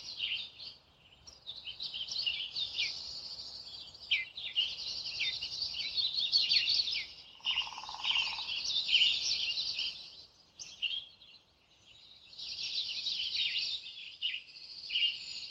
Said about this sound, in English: The birds sound so much closer, too. Those woodpeckers we heard drumming before are now in the tree right next to us.